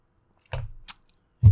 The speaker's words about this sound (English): All right, another sip of coffee, and we go to the A tier.